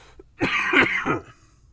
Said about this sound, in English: By the way, so we're in the, excuse me, you're going to have to bear through some coughing because I still got COVID.